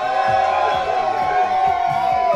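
A large crowd cheers and roars to welcome Christopher "the Goose" Goss, a dense, steady wall of voices with whoops and shouts rising above it, loud throughout the whole stretch with no break.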